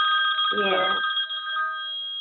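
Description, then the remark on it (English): A telephone rings with a steady, bright electronic tone that holds for the whole stretch, while a short burst of voice cuts in briefly near the start. “Where's the phone? It might be important.”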